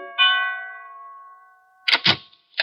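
A doorbell gives one bright, ringing chime that hangs and slowly fades over more than a second, followed by a couple of short, sharp clattering bursts.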